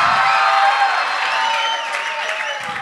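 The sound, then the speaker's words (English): A crowd cheers loudly and steadily, a dense wash of shouts, whoops and applause that holds for about three seconds with no pause. “Everybody cheer so my mom could listen to it later.”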